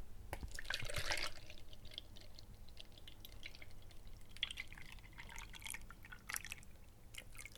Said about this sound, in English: So we're using whole milk. So I'm going to... pour out about 1.5 pints of milk.